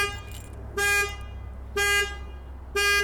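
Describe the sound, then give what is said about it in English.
A car horn honks three times in a steady, evenly spaced rhythm, each blast lasting about a quarter second, loud and clear over a low rumbling background: a car alarm set off when the owner sat on his car keys. “Why is my car hung? You hear that? That is my car”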